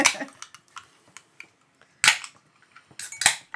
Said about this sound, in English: Opening the can, I already smell the green apple in the room. It smells like one of those sour apple suckers.